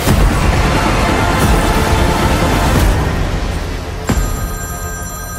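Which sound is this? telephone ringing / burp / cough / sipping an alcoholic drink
telephone ringing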